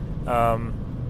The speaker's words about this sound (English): I am driving. It's very, very windy outside, so I apologize if things are extra loud in the background. I mean, they're always a little loud in the background, but if it's extra loud, it's because it's kind of windy.